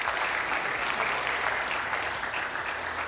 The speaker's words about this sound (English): Thank you so much. Aren't they beautiful? How about an applause for these beautiful babies?